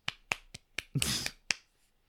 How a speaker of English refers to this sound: Clap. Yeah, clap for Spock.